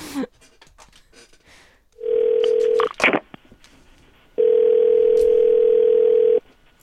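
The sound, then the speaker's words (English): Some clicks and rustling, then a steady low telephone dial tone, a brief flurry of dialing beeps as someone calls Steve Holtman's repair shop, and a longer stretch of the same flat, buzzing tone before it cuts off. “We'll give him a buzz.”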